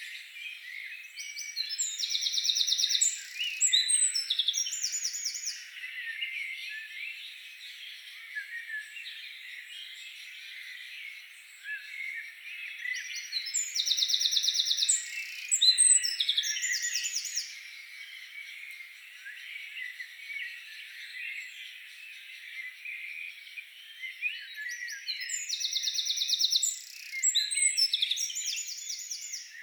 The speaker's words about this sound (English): So we thought, why not bring you all the dawn chorus? It happens at 4 o'clock in the morning, so not many of us are awake then listening to it. So here it is in its full glory.